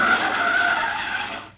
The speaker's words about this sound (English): Hey, Bubbles, look out. Here comes a car.